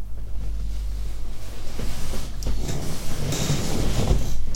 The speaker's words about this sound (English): I love this squeaky chair. I need to get some oil for it or something.